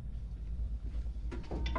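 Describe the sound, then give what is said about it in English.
A door of the General's office opens or closes, a couple of short scraping, clattering bursts in the last half second over a steady low rumble, fairly quiet overall with no voices. “That's a different door to the one he came in.”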